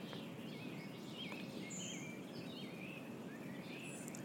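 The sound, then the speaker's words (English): Several birds chirp and whistle in short, overlapping phrases, fairly quiet, as they sing and fly in a park, over a steady outdoor background hiss with no one speaking. “The birds singing and flying.”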